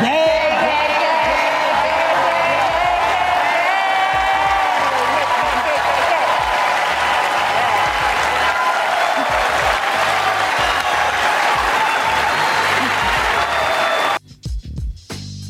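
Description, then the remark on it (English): A large audience at the start of the Oscars night claps and cheers loudly and steadily for about fourteen seconds as hosts Wanda Sykes, Amy Schumer and Regina Hall open the show, Denzel Washington among those clapping, with whoops and voices mixed into the roar, before it cuts off abruptly. “I don't know if we need to rewind that, but the first person they showed clapping and laughing and celebrating is Denzel Washington.”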